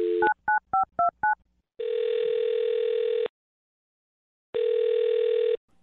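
telephone keypad dialing tones

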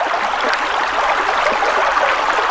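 river water flowing

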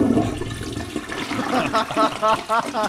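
toilet flush

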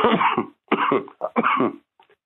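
coughing and throat clearing

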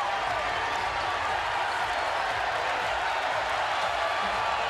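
basketball arena crowd cheering

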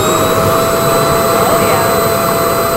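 vacuum cleaner running

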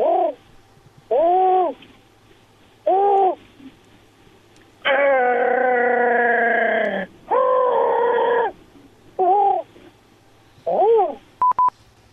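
pigeon cooing

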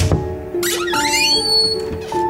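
creaking door opening

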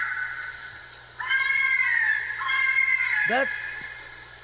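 fisher cat screaming

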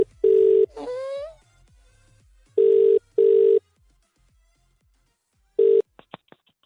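phone call ringing tone

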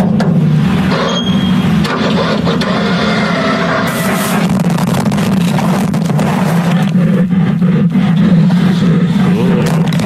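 animal growling

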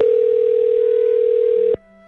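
telephone dial tone

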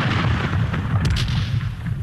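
cannon fire

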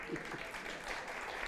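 audience applause

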